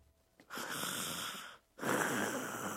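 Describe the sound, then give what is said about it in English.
A voice imitates snoring with two long, raspy, breathy rasps, one drawn in and one pushed out, fairly loud with a short pause between them. “You ain't gonna find me sitting around and snoring.”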